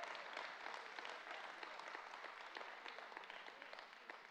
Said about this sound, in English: If you believe that today, give him a hand clap and say, I believe that.